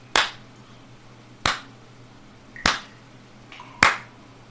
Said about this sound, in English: Well, I know we did good, but wow, applause.